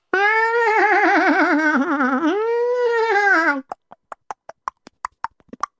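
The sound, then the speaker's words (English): Horses approaching as the bandit chief arrives: a long, loud, wavering whinny for several seconds, then a quick, uneven run of sharp clip-clopping hoofbeats with no one talking. “Suddenly, there was a sound of approaching horses.”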